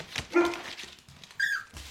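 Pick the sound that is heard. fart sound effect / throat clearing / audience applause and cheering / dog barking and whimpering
dog barking and whimpering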